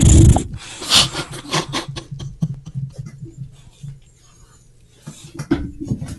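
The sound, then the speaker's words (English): A dog named Ginger Knobhead growls low and tears at a cabbage he knocked down, with irregular crunchy ripping bursts, snuffling breaths and short snorts scattered across the few seconds. “He will kill cabbage.”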